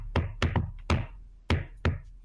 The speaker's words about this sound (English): We'll give you... a signal. I'm trying to think of how many knocks. I'll just do the...